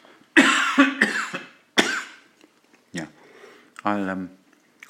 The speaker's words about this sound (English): But, excuse me while I cough.